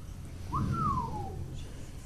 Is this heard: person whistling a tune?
yes